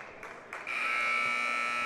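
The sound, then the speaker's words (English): A loud, steady electronic buzzer blares over crowd noise at an Exeter versus Daniel Boone basketball game, with two brief bursts before the long, harsh, buzzing tone holds to the end. “There's the buzzer.”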